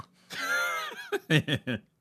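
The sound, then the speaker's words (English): A person imitates a pig: a drawn-out, high squealing cry that slides downward in pitch, followed by four short, clipped grunting oinks in quick succession. “Oink, oink, baby. Oink, oink.”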